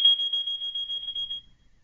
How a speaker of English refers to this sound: Hold on. He's in a hotel, and the alarm went off.